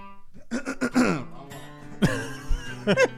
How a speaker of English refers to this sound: Turn up the cough slider.